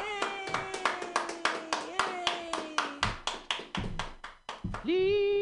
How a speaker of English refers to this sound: Clap your hands together